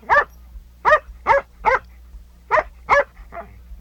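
A dog barks loudly, about seven sharp barks in uneven bursts, the last one softer, with a faint low hum underneath and no talking.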